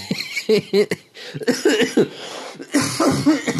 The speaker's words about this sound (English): All right. It's going to be the episode full of coughing fits.